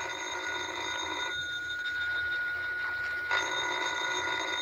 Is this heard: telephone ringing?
yes